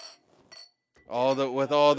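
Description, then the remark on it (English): Two light, ringing clinks of glasses touching in a toast, fairly quiet, followed by a loud voice speaking that takes over the rest of the moment. “We're going to do it again. Cheers.”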